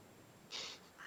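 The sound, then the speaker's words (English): A voice mimics a chicken snoring with two short, breathy, hissing snorts, the first higher and airier, the second lower and soft, with no talking. “the exact sound that entered my head at the idea of a chicken snoring.”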